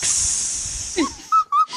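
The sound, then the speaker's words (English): A steady, bright hiss of air escaping as the screw top of a 1984 vintage bottle of Ripper Blanc wine is opened, lasting over a second, followed by two short squeaky tones as it cuts off. “I've got my 1984 vintage bottle of Ripper Blanc with the screw top. Hang on, let me pop that off real quick.”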